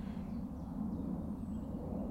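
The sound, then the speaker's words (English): A steady, loud low drone of an airplane overhead, a deep rumbling hum that holds evenly throughout with no voices over it. “It is a very loud plane.”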